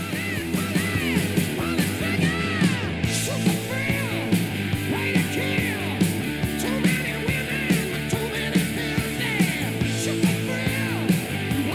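A loud hard rock song plays on SEN Track radio as the basketball anthem of the show Saturdays in the Gong, with a dense, driving band sound, a steady pounding beat and strained, shouted-sounding vocals on top, never letting up.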